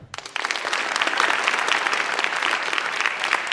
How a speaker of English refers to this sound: And all right, now, deafening applause. Clap if you think I'm right. Yeah. Yes. I thought you guys were smart, man. That was all UNC students applauding.